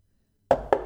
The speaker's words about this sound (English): Knock on that wood. Knock on that wood, yeah.